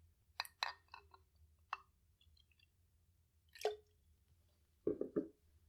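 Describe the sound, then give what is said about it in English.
Triple sec and lemon juice poured in a few short, splashy bursts with gurgles and drips, fairly quiet, separated by pauses, while making two White Lady cocktails. No one speaks. “Those sound like long pours, but we have to remind our listeners that we are making 2.”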